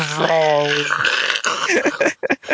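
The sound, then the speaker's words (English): A voice imitates the sound a rock would make, hawking a loogie: a low, droning guttural groan slides into a long raspy throat-scraping noise, then ends in a few choppy, sputtering bursts. “It hawks a loogie.”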